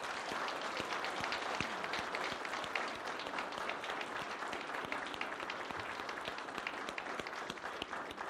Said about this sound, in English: And now, if you enjoyed the choir singing today, could we give them a big, huge round of applause?